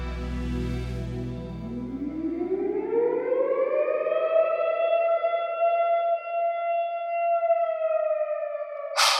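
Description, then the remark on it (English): A warning siren sounds in its weekly Wednesday test, winding up from a low growl into a steady, loud wail that holds its pitch, outdoors with a slight echo and no voices. “The sirens have become more routine the longer I've lived here.”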